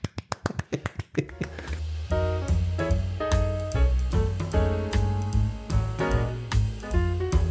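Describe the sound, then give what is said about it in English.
A quick run of about ten sharp, snappy claps, imitating the clap of chickens laying eggs as heard when walking past a chicken farm, crackles out in about a second before loud music with a heavy bass line takes over. “So there'd be an enormous clap when it shuts.”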